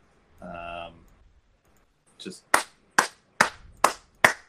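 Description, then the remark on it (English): A brief voiced sound, then a run of five sharp hand claps in a slow, steady rhythm, each one crisp and loud with quiet gaps between. “Like you're good at clapping.”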